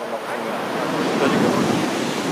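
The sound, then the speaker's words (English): Pacific Ocean surf rushes steadily onto the shore in light fog, a broad hissing roar that swells as a wave breaks midway, with no voices present. “Finally, after 3 days of group games, the players enjoy a day off at the ocean.”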